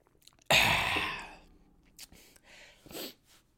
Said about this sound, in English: Take a little sip.